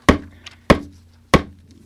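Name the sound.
knock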